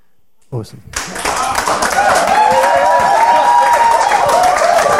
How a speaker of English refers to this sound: Awesome. How many words is that, too? That's why they're clapping, mate. That's why they're clapping.